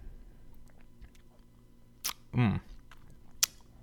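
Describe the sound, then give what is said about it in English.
A short wet swish of cucumber-flavoured beer sloshed around in a man's mouth as he tastes it, framed by a couple of sharp little clicks, against an otherwise quiet background. “Down the hatch. We'll see how it is. He's drinking. He's thinking. He's swishing.”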